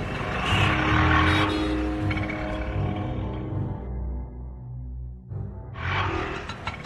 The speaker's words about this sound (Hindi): हिम्मत करके mini auto में बैठकर उस एड्रेस की तरफ निकल पड़ी।